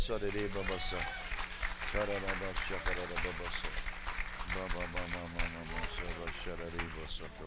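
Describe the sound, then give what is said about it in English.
An audience claps steadily for several seconds, sharp hand claps scattered through a loud wash of voices calling and cheering at the same time. “Someone clap Jesus.”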